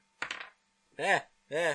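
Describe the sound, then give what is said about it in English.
Dice tumble onto a tabletop with a quick rattle of a few small knocks as damage is rolled in a tabletop game, followed by two short drawn-out vocal sounds. “as I drop my dice.”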